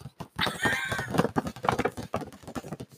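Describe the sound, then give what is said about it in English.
A gift bag rustles and crinkles in quick, irregular bursts for about three seconds as a gift is being opened, with a steady scratchy crackle and no talking. “Here's the bag.”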